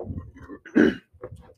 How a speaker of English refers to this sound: Well, he didn't do it, but he just kind of like cleared his. Coughed again, but put his hand on the side of his mouth, so it just like echoed towards me.